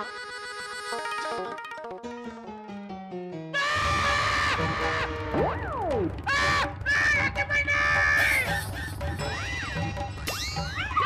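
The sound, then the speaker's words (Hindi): A man afraid of being given an injection screams in fear, loud, frantic wailing yells rising and falling, amid a busy clatter of comic sound effects and music that follows a short descending musical sting. “जेठा भाई ऐसे क्यों चिल्ला रहे हैं यही तो आपका इलाज है।”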